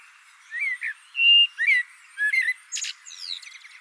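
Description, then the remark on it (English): A blackbird sings a short run of mellow, fluty whistled notes, rising and falling, then finishes with a burst of higher, scratchy twittering. No one speaks. “Birds sing their songs in order to defend their territories.”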